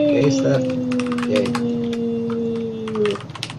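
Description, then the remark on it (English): Quick, irregular clatter of fingers typing on a computer keyboard, the clicks crisp, running over a steady low electrical hum that fades out near the end. “Good typing”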